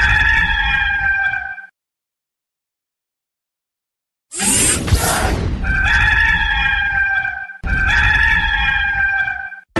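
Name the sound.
rooster crowing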